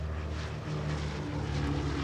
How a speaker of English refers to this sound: 0347, takeoff. The Boxcar and two observation planes take off from Tinian and head to the primary target, the Kokorura Arsenal, located at the southern end of Japan.